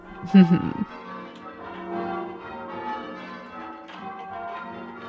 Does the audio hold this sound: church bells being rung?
yes